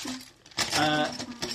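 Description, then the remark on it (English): Dice, including a d12 and d6s, rattle and clatter across a hard tabletop in a quick burst of clicking knocks that tumbles on for about a second before settling. “Special dice. So it's the number of sixes that you've got dots on a d12.”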